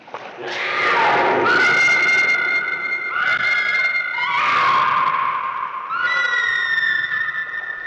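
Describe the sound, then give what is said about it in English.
A woman screams in terror in a film scene at a basement pool, a run of long, piercing, sustained cries that rise and fall in pitch, loud with a reverberant, echoing space around them. “While Alice's screams here are most certainly coming from a very real place of fear, they are also moving the threat posed by Irina from potential to actual.”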